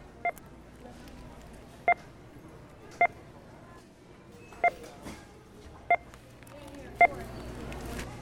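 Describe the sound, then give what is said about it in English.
Six short, bright checkout scanner beeps, recorded at a checkout line in the Bay Area, sound at roughly even intervals over a steady murmur of store background noise, each beep crisp. “We use those beeps to create this piece we're about to listen to.”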